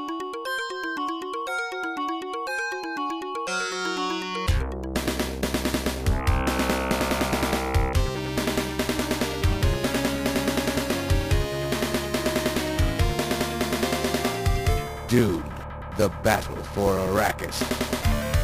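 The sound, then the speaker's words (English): Title theme music of a Mega Drive video game that opens with a delicate, chiming arpeggiated melody, then bursts into a loud, driving full arrangement with pounding drums, deep bass and layered melodic lines. “but the title track, yeah, the like theme, mm-hmm.”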